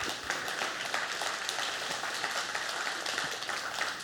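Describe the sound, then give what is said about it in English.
A crowd claps steadily for about four seconds, a dense, even wash of many hands with no pauses or voices on top. “With that, go and clap.”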